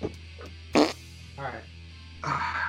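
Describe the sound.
A loud fart bursts out in a sharp, raspy blast, followed by a shorter buzzy one, with brief murmured voices and a low background hum around them.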